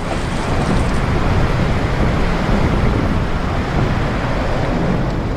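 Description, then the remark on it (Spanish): A steady, loud roar of rough sea surf fills the whole stretch, churning without pause, with a windy rush mixed in and no voices. “Fuertemente asido a mi tabla de salvación, seguí siendo por mucho tiempo juguete de las olas.”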